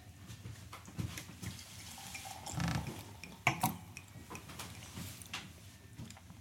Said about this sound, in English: And I mean, this is something that you probably were doing quite a lot when you were traveling in America, pouring beers.